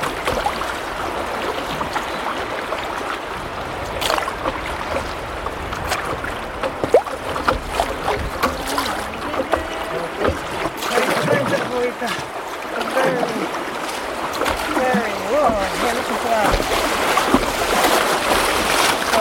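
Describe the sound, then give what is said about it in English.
A paddleboard, paddled kneeling, moving down a fast, rushing stretch of the River Wye as it sweeps around a curve: steady, loud churning water with constant hiss, irregular splashes and slaps against the board throughout, growing slightly busier toward the end. “You can hear the water, it's faster here, the rushing, we're sweeping around a curve.”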